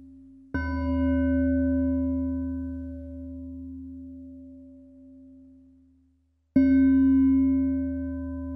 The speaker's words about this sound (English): Continuing in this way of breathing, breathing in with one chime and out with the next chime.